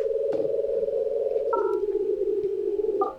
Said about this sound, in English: Hey, the dial tone.